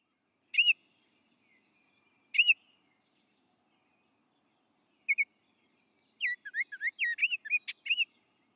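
An oriole's warbling song in May, among blossoming trees in the forenoon: short bursts of rich, fluty whistled notes with pauses between them, ending in a quicker run of looping, rising and falling phrases, clear against a quiet background.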